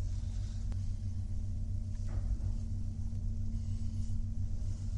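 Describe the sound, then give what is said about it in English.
A steady, low mechanical rumble and hum of a small, windowless lift carrying four people upwards to the top of a tower, continuous and even throughout with a faint tonal drone, no voices present. “And we press the second to top button because the top one is an alarm. Yeah. We don't want to press that. We're now moving upwards.”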